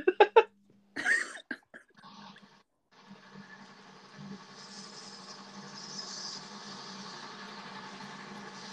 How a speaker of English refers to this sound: One second now, here comes the steaming train.